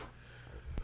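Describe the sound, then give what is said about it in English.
A single short, low-pitched burp rumbles up near the end, a guttural croak with a quick rough burst at its peak, preceded by faint background noise. “Oh, fuck. Excuse me. Shit, I'm disgusting.”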